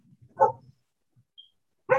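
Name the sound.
dog barking in background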